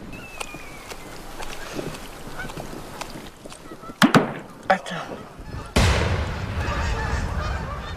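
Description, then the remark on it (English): Wild geese returning in spring to the skies of Pervernatuk honk in scattered, overlapping calls outdoors, growing louder midway, before a steady rush of wind or water noise takes over toward the end. “The wild geese returning to the skies of Pervernatuk beckon us to leave.”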